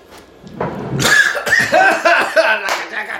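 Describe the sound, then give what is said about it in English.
Three people cough and sputter in a quick, overlapping cluster of harsh bursts after taking a shot, with some strained, raspy vocal sounds mixed in over about three seconds. “We sound like three vaginas coughing.”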